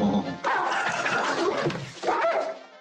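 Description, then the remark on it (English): A dog makes a couple of rough barking or growling bursts, with a short pause between them and some noisy rustling underneath. “I thought you said your dick did not bite. That is not my dog.”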